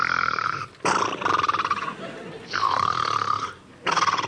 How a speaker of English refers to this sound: But Nanny's snoring kept him awake.